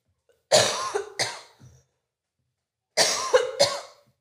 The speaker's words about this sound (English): Uh-oh. I hope I don't have a coughing fit. Ugh.